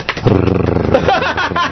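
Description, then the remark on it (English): A voice in a studio imitates a drum roll, a 'Klingon drum roll', with a rapid, rolling, trilled rumble that holds steady for under two seconds, loud and buzzy with a fast fluttering pulse. “That was a Klingon drum roll.”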